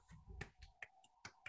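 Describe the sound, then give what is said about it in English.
A soft golf clap: a few sparse claps, four or five sharp little smacks at an unhurried, uneven pace, quiet overall with a low rumble underneath the first ones. “Golf clap.”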